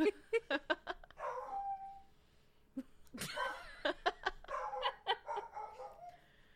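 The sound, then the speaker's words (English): Dogs bark in quick, repeated bursts, with a higher whining, whimpering tone drawn out between the barks; the sounds are fairly loud, with a sharp yelp-like burst midway. “The dogs don't appreciate it.”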